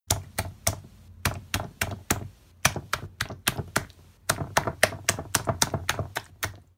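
A quick run of wet, smacking slaps on mayonnaise beats out a song in rhythmic bursts. Dozens of sharp hits fall in uneven clusters with short pauses, and no voices are heard.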